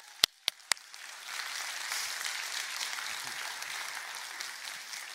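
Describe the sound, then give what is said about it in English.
A few sharp, separate claps ring out, then a crowd joins in with steady, broad applause for a former principal who stands up at the back as new staff are introduced, holding at a moderate level until the end, with no one talking over it. “Can we clap for him?”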